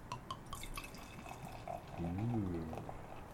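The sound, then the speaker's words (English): A big, resinous, hoppy beer pours from a freshly opened bottle into a glass, with gurgling, fizzy splashes and small drips, ending in a brief low rising tone near the end. “Alright, I'm gonna pop the top. Oh, my top. Oh, my double top. So many tops. All right. And the pour.”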